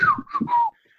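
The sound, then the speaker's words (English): A person whistles quick, chirpy gliding tones in a short burst, imitating a little robot's beeps and warbles, clear, then it trails off into near silence. “Just whistling in the booth.”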